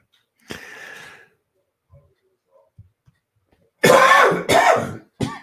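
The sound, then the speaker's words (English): A rough throat clearing, a brief pause with faint rustles, then a burst of three loud, harsh coughs in quick succession, with no talking. “Obviously, I'm a little coughing fit here today, so I'm going to cut this short just a little bit, okay,”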